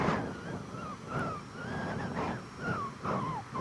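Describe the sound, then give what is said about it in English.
A thin, wavering whistle through the nose rises and falls in pitch, recurring several times with each breath over a soft, steady breathy hiss; no one speaks. “I've got a nose whistle. Can you hear?”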